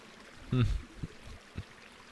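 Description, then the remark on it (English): A quiet brook with a soft, steady wash of flowing water, broken by a brief throaty gurgle and a couple of small plops as it bubbles along. “32-bit floating point sounding audio sample of just a bubbling brook, a blistery brook.”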